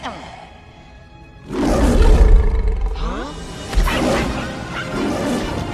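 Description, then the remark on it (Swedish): A person vocally imitates Mufasa's lion roar from The Lion King in two loud, rough bursts, a long growling roar followed by a shorter one, after a quiet start. “Nej men Lejonkungen, den här scenen när Mufasa brottar bort hyenorna och man får se hans enorma vrål.”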